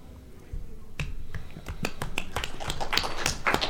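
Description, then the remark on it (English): Soft, polite golf claps from a few hands, scattered and irregular, starting sparse and picking up into a light patter of crisp little pops. No one speaks. “The little golf claps. I love them.”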